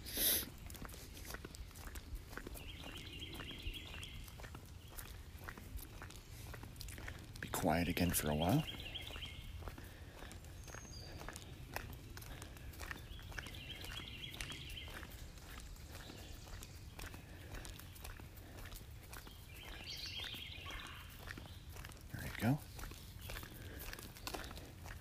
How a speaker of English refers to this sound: This is part of my road where I still have forest on either side of the road, so the bird song tends to be rather loud here, so it's nice. Very, very nice.